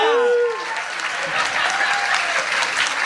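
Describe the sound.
A crowd breaks into steady, dense applause, a continuous wash of clapping that stays fairly loud throughout, with a brief high-pitched voice or whoop at the very start.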